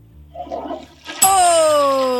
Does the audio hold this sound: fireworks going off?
no